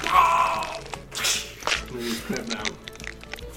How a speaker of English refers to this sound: You just see these tendrils of ichor start climbing up his back and around his neck. No! No! You just hear crunch, crunch, crunch as his body is being pulled and crunchy.